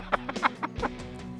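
A chicken clucks in a quick run of five or six short, choppy bursts, moderately loud over a steady low hum.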